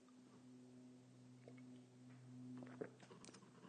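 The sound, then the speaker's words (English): A quiet sip of coffee from a mug: a small clink, then a short wet slurp and soft mouth sounds over a low steady hum, with no talking. “Fill it with your favorite liquid I like, coffee. And join me now for the dopamine of the day, the thing that makes everything better, including 2020.”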